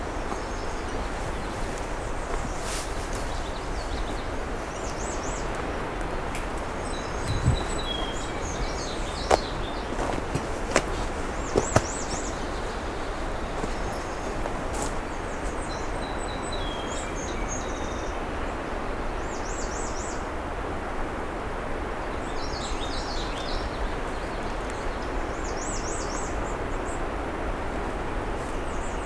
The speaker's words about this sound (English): Definitely see a black and white warbler here, but that's not what's making that sound. That one there. Maybe a redstart.